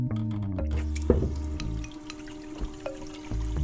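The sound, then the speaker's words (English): Water from an opened faucet runs steadily into a kettle, a continuous splashing stream with a few sharper clinks and drips along the way. No one speaks. “Take a kettle, open the faucet, watch the water running in a stream into your kettle.”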